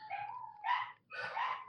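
A dog whines in drawn-out, high-pitched cries, three in quick succession with brief breaks, heard alone without any talking.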